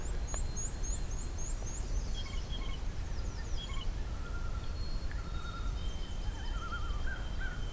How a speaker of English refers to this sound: American crow.